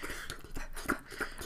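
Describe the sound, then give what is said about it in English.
A person imitates lapping waves with their mouth, making a quick run of breathy, wet swishes in an uneven rhythm at a moderate level, with no words spoken. “You listen hard, but the lapping of the waves make it difficult to hear. I'll make that sound while you do this next thing.”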